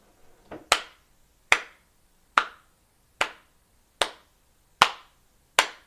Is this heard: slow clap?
yes